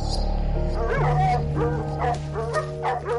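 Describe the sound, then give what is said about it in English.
Cadaver dogs bark and yip in a rapid series of sharp, high-pitched, loud calls over a steady low mechanical hum. “Those cadaver dogs were on to something.”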